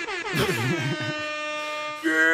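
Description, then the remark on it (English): A loud air horn sound effect, triggered by pressing a button, blares for over two seconds, a steady harmonic honk with a brief wavering start and a sharp pitch jump near the end. “Oh, can you hit the air horn button?”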